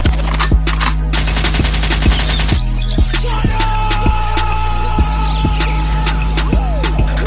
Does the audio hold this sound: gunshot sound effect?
yes